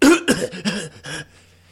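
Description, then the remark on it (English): A person imitates a harsh cough, a quick run of about four raspy bursts, fading off at the end. “They reuse this sound bite of this dude coughing 20 times. And the cough was just like this.”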